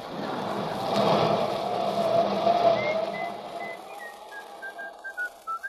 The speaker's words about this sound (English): Cut out that whistling. I can't stand it anymore. Here now. Yeah, what's the matter, son? Whistling. All the time whistling. Your mother must have been frightened by a tea kettle.